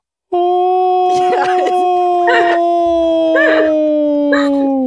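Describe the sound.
An imitated howl: a long, sustained howl holds a steady, slowly falling pitch, eerily human-sounding, with short rough bursts breaking through at intervals. Loud, continuing unbroken for several seconds.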